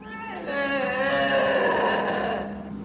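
A lynx lets out one long, drawn-out yowl lasting a few seconds, strained and slightly wavering, heard up close and fairly loud with nothing else around it.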